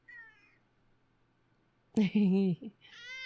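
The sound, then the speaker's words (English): A cat named Junior meows several times: a short, faint mew, then after a pause a loud, drawn-out meow with a brief follow-up, and a higher, thinner call at the end. “Humans and cats living together, sharing and caring.”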